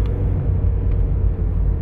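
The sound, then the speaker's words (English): Steady low-frequency road rumble from inside a car on a roughly 10-minute drive to work on a cold day of about 35 degrees, a constant engine and tire drone filling the cabin with no voices, holding an even level throughout. “Well, but anyway, I'm just heading off to work. It'll be like a 10-minute ride.”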